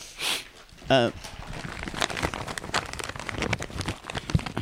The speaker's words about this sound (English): May I get a cough drop or will that distract you? You can. Okay. Just unwrap it quietly, please.